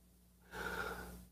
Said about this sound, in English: Yes, we're practicing breathing. Yes, like a good bong hit.